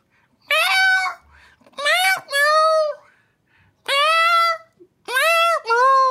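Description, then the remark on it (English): A person sings the slow, gentle melody of a Christmas carol entirely in drawn-out meows, about six sustained notes in short phrases with brief pauses, alone, imitating a cat. “That was Stille Nacht there.”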